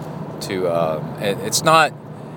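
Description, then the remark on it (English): A car heater fan blows on its highest setting while the car is driven, a steady whooshing rush over a low engine hum, with brief muffled voice sounds breaking in over the top. “And I'm driving in my car with the heater on the highest setting and the fan on.”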